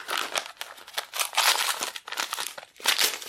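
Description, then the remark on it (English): Wrapping paper being torn off a gift in several quick, crinkly rips, fairly loud, with papery rustling between tears and no talking. “Ripping paper.”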